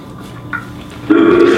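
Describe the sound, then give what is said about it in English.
A person does a vocal hippo imitation: after a faint short grunt, a loud, low, gravelly bellow cuts in and holds steady, guttural and belch-like, to the end. “And so for my next animal impression. Hippo.”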